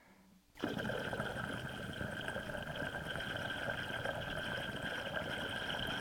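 Water bubbling through a double diffused bong percolator begins abruptly after a brief quiet moment, then churns steadily, a dense gurgle layered with high, chirpy whistling tones. No one speaks.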